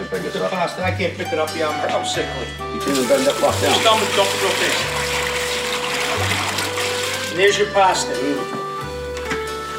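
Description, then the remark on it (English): Pasta cooking water is dumped into a laundry bag, pouring out in a steady gushing splash for several seconds, then tapering off, with people talking before and after and a low hum running underneath. “Joey's going to dump the water right into here.”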